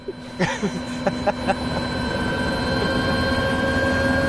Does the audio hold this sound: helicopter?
yes